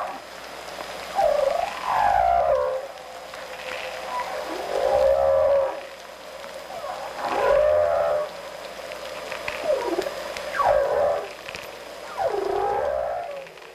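Humpback whale song: a series of long, sweeping moans and whoops rising and falling in pitch, repeating roughly every few seconds, resonant and clear with no talking.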